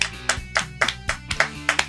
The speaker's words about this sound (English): All right, let's clap it out. All right.